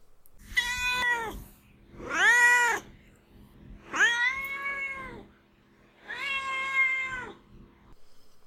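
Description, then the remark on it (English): A domestic cat named Duarte meows four times in a steady sequence, each call long and clear, with short pauses between them and no talking. “All right, now it's time for Duarte's Corner when we ask my cat Duarte his opinions on the book, although he's already shared some.”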